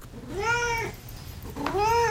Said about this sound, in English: Now it's time for Duarte's Corner, where my cat Duarte will give his opinions.